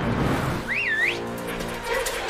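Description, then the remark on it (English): In a Nissan Rogue commercial, a man, a stranger to the dog, gives a single short whistle at a dog sitting on a dirt road in the woods, a bright tone that swoops up and down in a quick wavy call, heard over a steady low rumble like an idling car. “Okay, then the guy whistles.”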